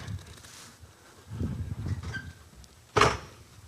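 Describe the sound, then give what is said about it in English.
Chairs from three sets being carried up and handed over one at a time, then set down: a stretch of low bumping and shuffling, then a single sharp clack as one lands on a hard floor, with no voices. “I want you to help me bring those three sets of chairs up here.”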